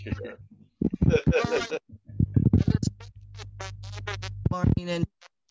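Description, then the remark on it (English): A garbled phone voice breaks up into choppy, distorted fragments, cutting in and out with brief dropouts and a low steady hum underneath. “We can't hear you well, hon. Yeah, you're going in and out.”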